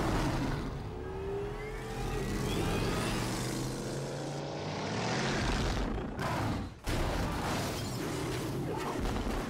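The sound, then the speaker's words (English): A loud car engine roars continuously, its pitch sweeping upward as it revs and accelerates, with a brief drop-off like a gear change before the roar resumes. No one speaks. “He is in a vehicle.”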